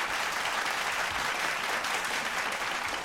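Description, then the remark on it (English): Steady, dense applause from an audience, many hands clapping at once in a loud, continuous crackle that holds evenly for about three seconds with no voices standing out. “Let them claps go out and start clapping white folk.”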